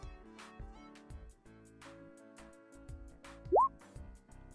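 A single loud, wet spit-like plop with a quick upward bloop lands near the end as an amaranth plant spits in someone's face and the liquid drips down, rising over a soft, steady musical backdrop with low rhythmic thumps.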